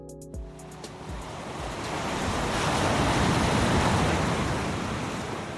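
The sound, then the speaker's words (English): Ocean waves crash onto the shoreline at East Beach in the North Taranaki town of Waitara, building from a brief thump into a broad, steady roar of surf that swells and lingers. Faint tonal hum in the opening second, no voices. “His home is right on the shoreline, and recent storms have left him in little doubt about the power of the ocean.”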